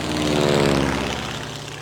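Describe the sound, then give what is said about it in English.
A loud propeller airplane roars past low overhead, its droning engine buzz swelling and then sliding downward in pitch as it passes. No voices, just the steady growl of the engine. “Hey, what is that flying so low? Oh no, watch out!”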